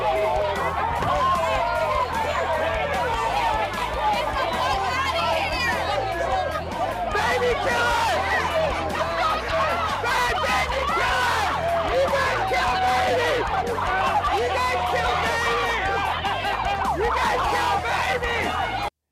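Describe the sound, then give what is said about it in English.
A dense protest crowd roars steadily with overlapping shouts and chatter, while a siren wails faintly through the din. The noise stays loud and continuous throughout. “So yeah, that's pretty much what that was. Out there at the protests.”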